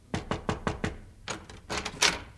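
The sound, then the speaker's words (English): At night, five quick, evenly spaced knocks on a wooden dressing room door, followed by a few heavier, uneven raps. Fairly loud, with no voices. “one night I was in my dressing room changing off the performance when there came a knock at my door.”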